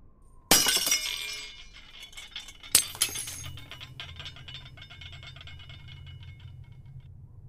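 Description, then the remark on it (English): A loud, sharp crash of a glass window being smashed out by a fist wrapped in torn shirt cloth, followed by a second impact about two seconds later, then scattered tinkling of falling shards settling into a low rumble. “walks over to the nearest glass window and kind of rips part of his shirt and wraps it around his wrist and his fist and smashes out the window.”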